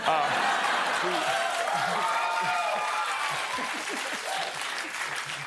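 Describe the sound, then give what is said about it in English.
An audience claps steadily in a dense, even wash of applause, with a few faint murmurs and laughs mixed in, holding at a fairly constant loudness throughout. “Sorry, I know you guys wanted to clap, but everything I'm gonna say is gonna be amazing.”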